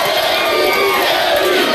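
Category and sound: crowd, studio audience crowd cheering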